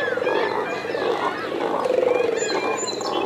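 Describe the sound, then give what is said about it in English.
Harsh, guttural croaks and grunting calls from several cormorants overlap continuously, a rough, throaty chorus with no talking. “Their croaking, grunting cries sound more like pigs or reptiles or aliens, anything but birds.”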